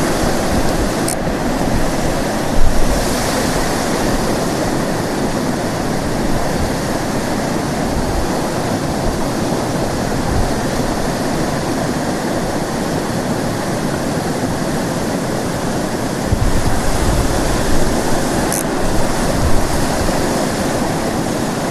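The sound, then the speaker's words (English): A steady, roaring rush of a waterfall and stream current fills the scene, loud, a dense continuous wash with slight surges but no pauses and no voices. “No idea how I'm gonna get over this waterfall.”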